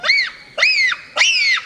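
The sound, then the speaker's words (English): Three shrill, high-pitched bonobo screeches, each rising and then falling in pitch, evenly spaced about half a second apart. They are loud and harmonically rich, with no talking. “Those high-pitched screeches are a sophisticated form of communication, and their gestures are unmistakable.”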